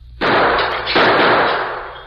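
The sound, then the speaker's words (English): A sharp gunshot bursts out and a store's window glass shatters, followed by a second loud crash and a long hiss of breaking, tinkling glass that fades gradually. No voices are heard. “He shot the glass out of the window.”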